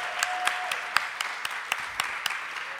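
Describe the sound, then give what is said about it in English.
A live crowd applauds steadily, a dense wash of clapping with individual sharp claps popping out at a regular beat; a brief faint whistle-like tone sounds near the start, and no one speaks. “I didn't give you guys a chance to clap.”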